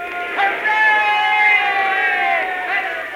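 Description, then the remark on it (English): A crowd of thousands of people at a rocket landing field cheers and roars steadily as a crew returns from a round trip to the moon, a dense wash of many voices holding loud and sustained for a few seconds, with brief swells and shouts rising out of the din. “What's all the cheering about? They're cheering us.”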